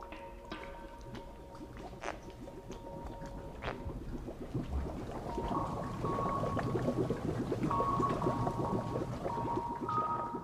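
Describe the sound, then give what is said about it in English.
A spiny pufferfish, put back in the water, deflates by forcing air or water out in wet, squishy gurgles and splashes that build and continue steadily, over a faint mechanical hum. “So when we put him in the water, he's got to force all that air or water out of him.”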